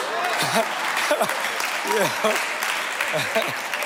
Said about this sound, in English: I'm going to use that whenever I don't know what to say. I'm just going to just give a round of applause.